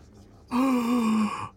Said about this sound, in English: Gasp.